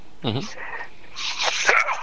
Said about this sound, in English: Excuse me. Uh-oh. Don't get sick there. Anyway. I know. I'm the same way. It's like any cough. Social distancing here. Yeah, any cough or sneeze.